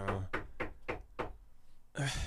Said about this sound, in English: Who is that? Yeah, knocking on the indoor door of my house. Like, somebody had to have gone through the front door, and then an hour knocking on the door of the manic cave.